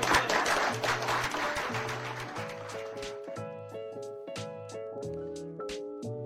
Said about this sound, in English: For the sake of our party, for the sake of our nation, we must say here and now to all who would lead our party in this new century, the era of big Republican government is over. And you can applaud if you agree with that.